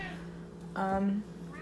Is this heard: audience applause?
no